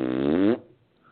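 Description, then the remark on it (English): A single loud, buzzy fart sound effect lasting about half a second, with a low rasping tone that cuts off abruptly, followed by quiet. “Ladies and gentlemen, the host of this broadcast is having a momentary brain fart.”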